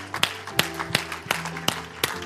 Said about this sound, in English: If you're glad about what he's done, go on and clap your hands to him this morning. Hallelujah.